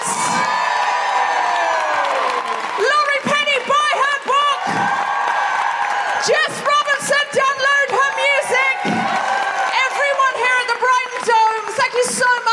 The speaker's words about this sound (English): And please, can I have a huge, huge, huge round of applause for the incredible Jessica Hynes.